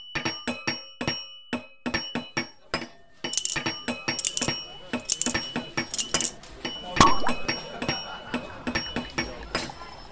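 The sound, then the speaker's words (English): Glass clinks and taps repeatedly in quick, irregular bursts, bright, as a wine bottle is handled and opened, with ringing tones lingering between the sharp knocks. “But now, please grab a glass and listen to how today's ghost got out of the bottle.”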